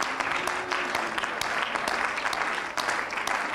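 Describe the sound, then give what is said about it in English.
An audience in a church sanctuary claps in praise to the Lord, a dense wash of many hands clapping at once with crisp overlapping claps and no clear rhythm, holding at an even, fairly loud level throughout. “Can we give him a hand clap of praise here tonight?”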